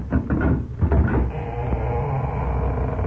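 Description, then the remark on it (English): A door is opened with a few quick clunks and rattles of the latch, then settles into a steady, muffled hum with no one speaking. “Maybe somebody's coming to the door.”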